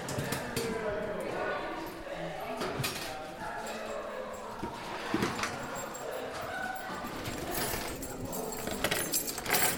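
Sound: keys jangling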